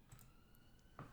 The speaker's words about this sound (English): If anyone can hear sirens, like, that's on my end.